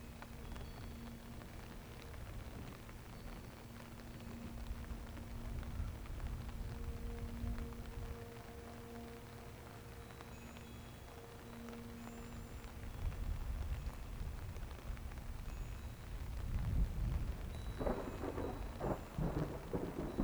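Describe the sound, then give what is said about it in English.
Steady rain falls throughout a storm while low, rolling thunder rumbles, swelling louder toward the end with a deep, grinding roll. No voices. “The sound of the rain is relaxing.”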